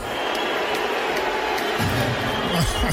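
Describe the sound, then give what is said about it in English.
A large audience roars with a dense, sustained mix of cheers and boos as Elon, introduced as the richest man in the world, is brought out. Low, drawn-out booing swells in the second half under the steady crowd noise, with no clear speech. “Cheers and boos, I see.”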